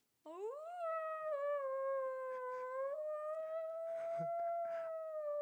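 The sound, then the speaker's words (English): A voice imitates a low-pitched wail similar to an ambulance siren: one long, steady howling tone that swoops upward at the start and then holds, with a few soft breathy noises scattered over it. “The two children were stopped immediately in their tracks when they began to hear a low-pitched wail similar to that of an ambulance siren.”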